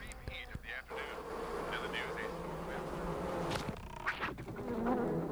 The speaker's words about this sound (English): What is it? Flies? It's a beehive. Oh. This guy's covered in bees.